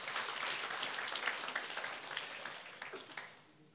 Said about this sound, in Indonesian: Tepuk tangan buat Tuhan, saudara.